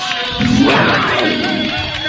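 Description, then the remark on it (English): A big crowd at a football game roars and cheers after a touchdown, a loud, sustained wall of voices that surges up after a brief quieter start and holds steady for about two seconds. “So, roar!”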